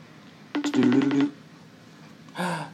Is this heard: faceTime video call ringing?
yes